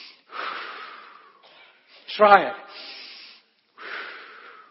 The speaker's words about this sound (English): Breathe in the life of God.